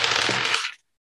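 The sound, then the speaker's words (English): Two dice rattle and tumble far across a table during a tabletop game in a brief, fairly loud clatter lasting under a second, landing a 3 and a 2, then stop abruptly into silence. “It did sound... 2 dice. Like it was 2 dice.”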